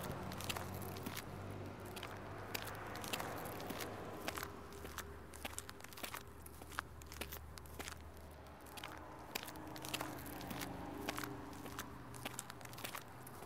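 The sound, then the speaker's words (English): Steady footsteps crunch along at a regular walking pace, fairly clear, with a low rumbling background underneath and no one speaking. “Let's keep walking.”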